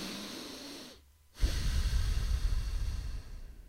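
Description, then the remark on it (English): A deep breath through the nose: a steady airy inhale, a brief pause, then a louder, rougher rushing exhale that continues to the end, with no talking. “Let's all do a deep breath together.”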